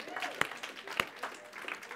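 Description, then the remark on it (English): Scattered handclapping with two sharp, loud claps standing out over a soft, continuous patter of lighter claps, while voices murmur underneath. “Stop clapping, son.”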